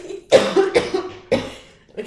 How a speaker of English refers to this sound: No, I have to cough again.